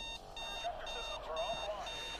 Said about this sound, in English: And an alarm clock sounds, followed by familiar music.